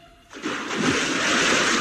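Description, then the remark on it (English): A sudden loud splash as a person falls heavily into water, followed by a continuous rush of churning, sloshing water that carries on to the end with no voices, from The Duel Show, a BBC recorded programme. “He's fallen into water.”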